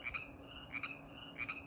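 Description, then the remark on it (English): Frogs croak at night in a steady, repeating chorus, with three bright pulsing bursts spaced evenly apart, over a low, constant background hum; no one speaks. “I hope y'all hear that over the frogs.”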